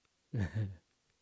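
A single short cat meow, about half a second long, drawn out in two tonal parts. It's clear, with near silence before and after.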